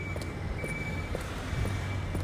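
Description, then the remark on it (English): Foley of a woman's boots clomping down Oxford Street in London in a steady, unhurried rhythm, about five heavy heel strikes over a constant low rumble of traffic with a London bus going by. “the sound of her boots clomping down the street.”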